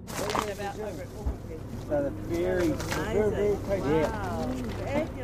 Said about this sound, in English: So what's going on down here at Whakatane Wharf with the two mussel boats is pioneering stuff, all right.